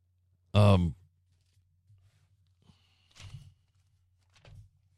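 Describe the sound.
A page of a book being turned, heard as two soft, brief papery rustles, preceded by a loud sighing breath from a voice.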